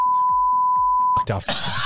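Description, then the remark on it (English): A person's voice imitates a steady, high censor beep that holds for about a second over muffled talking, then cuts off as loud, noisy voices and commotion burst in. “Once I do the beeping sound, say everything.”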